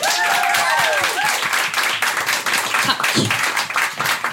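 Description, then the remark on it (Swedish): A burst of warm applause from a crowd, dense and steady clapping throughout, with a few whoops or cheers rising briefly at the start. “Stor varm applåd”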